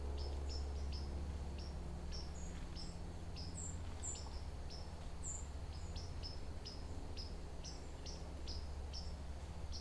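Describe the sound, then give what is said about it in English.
White-throated sparrow seep calls, a scattering of thin, high, sharp notes repeating irregularly throughout, some brighter than others, over a steady low background rumble. “Yeah, all these seeps, white-throated sparrows, come in two varieties.”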